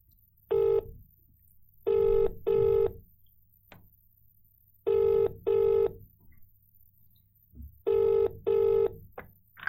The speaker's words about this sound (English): So I think it's time to call. I have my phone right here. Mm-hmm. We're ready to call him. I think we should do it. Dial away.